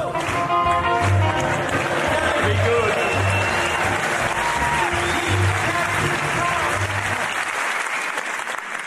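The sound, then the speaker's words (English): A crowd claps steadily for several seconds, a dense, even patter of many hands at constant loudness, with faint cheers and voices mixed in before it cuts off abruptly near the end. “Thank you for giving me the clap.”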